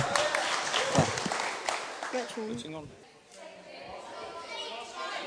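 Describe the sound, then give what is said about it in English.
A burst of clapping from a group for the answer 'eating breakfast while getting dressed', dense and crackly at first, then thinning out as voices and a brief cheer rise over it and the applause fades to a low murmur. “Well done, round of applause for that one.”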